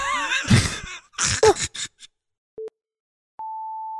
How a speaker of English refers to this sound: That is an unhappy cat. Locked in a bedroom. Probably going to shit all over everything.